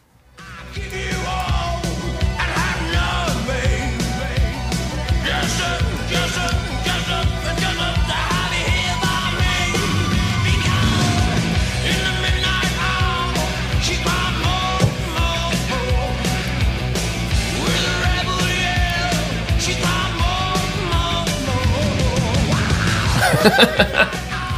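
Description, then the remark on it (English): A loud, driving 1980s rock song plays for about twenty-five seconds, with pounding drums, distorted guitars and shouted vocals at a steady, full volume throughout, and no one talking over it. “The song was named after a brand of whiskey that the singer saw the Rolling Stones drinking a bottle of.”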